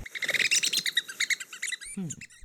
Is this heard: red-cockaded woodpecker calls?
yes